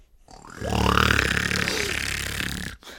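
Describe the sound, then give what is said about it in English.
A man's voice makes one goofy, exaggerated snore imitating the cartoon character Goofy, pretending to be asleep in bed in the morning: a loud, drawn-out rattling rumble with a rising nasal whine, lasting a couple of seconds before cutting off abruptly. “I make the goofy snoring sound to try to simulate my asleepness, which then tells him that, okay, Dad's not asleep because no one besides Goofy would make that sound when they're actually sleeping.”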